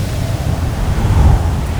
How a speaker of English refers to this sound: This is what it talks about, a gale of wind, fierce wind, and can do this.